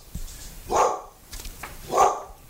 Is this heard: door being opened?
no